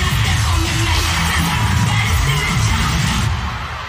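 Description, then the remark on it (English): About 10,000 cheerleaders yell and chant together in a loud, dense roar, counting the beat over a steady rhythmic clapping after their routine music stops mid-routine, helping finish the routine; the sound fills the whole stretch before easing slightly at the end. “When your music stops mid-routine and 10,000 cheerleaders count and clap to help finish your routine.”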